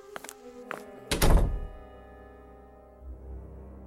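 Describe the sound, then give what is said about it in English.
A control room door swings shut with a heavy thud as a man leaves the room, preceded by a couple of light clicks from the handle, then its resonance fades into a low, steady background hum. “Henry will leave the control room, closing the door behind him.”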